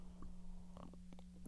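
A quiet sip from a drink: a few soft wet slurping clicks and a gulp in quick succession over a steady low hum, with no one talking.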